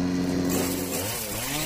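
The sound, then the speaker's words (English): A Green Machine 62-volt battery chainsaw whirs loudly, its steady electric motor whine dipping and rising in pitch toward the end, with no voices present. “This fleet of sleek, stylish, and supercharged lawn care solutions has it all, from self-propelled mowers to string trimmers, chainsaws, blowers, and even combo kits.”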